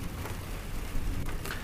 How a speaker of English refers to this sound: The skies outside rumble with rolling thunder, and persistent raindrops drum a steady rhythm on the roof overhead.